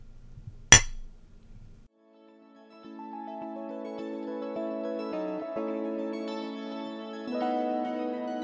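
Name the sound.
glasses clinking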